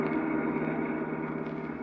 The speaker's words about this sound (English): Right now, George, his secretary, Claire, and Sonny are driving along in his car.